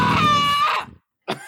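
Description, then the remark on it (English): A loud, shrill human scream rings out for under a second over a brief sound effect, then cuts to silence before another short burst of sound. “That screaming, by the way, is not part of the sound effect.”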